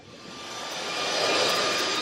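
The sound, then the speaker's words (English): A speedboat heard underwater in Puget Sound: a steady, hissing engine drone with a faint whining tone that swells louder over about two seconds, then holds. No voices. “Plenty of it comes from us, fairies, speedboats,”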